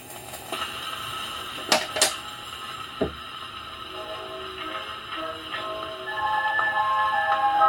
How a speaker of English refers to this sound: Wind up, you have to release the brake on the platter, give it a spin to help it start going, and then set the needle down. And then close the lid, because that helps keep some of the surface noise out.